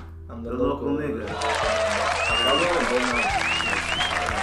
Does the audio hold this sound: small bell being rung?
no